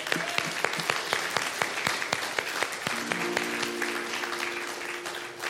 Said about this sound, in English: I think this is a good time to clap and give a praise offering to the Lord for what we see here.